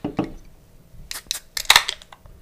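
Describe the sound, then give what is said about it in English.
Glasses of 5% ABV Golden Ale beer from Nokomis Craft Ales clinking together in a toast, a quick cluster of four or five bright, sharp clinks, with no talking over them. “Ready to have it? I'm ready to have it. Cheers. Cheers, my man.”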